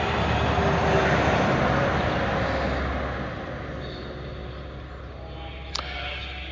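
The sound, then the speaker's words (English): A heavy truck rumbles past on a state route, its broad low roar swelling in the first few seconds and then fading away, with a brief sharp clank near the end. “Here comes a truck.”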